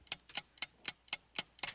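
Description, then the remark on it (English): A game timer for a 30-second round ticks steadily, seven crisp clicks about a quarter second apart, clear with nothing else behind it. “Well, starting the clock now.”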